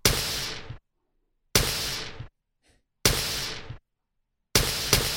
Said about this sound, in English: So it's kind of like, you know, someone backing their car into a wall or something, a garage. it's got this really kind of harsh, explosive snare sound. I think the distortion really adds.